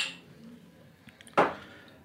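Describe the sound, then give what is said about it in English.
A single sharp clink of glasses of 92-proof liquor touching in a toast, fairly loud, ringing briefly over a quiet background with no talking. “But yeah, let's have a drink. Cheers.”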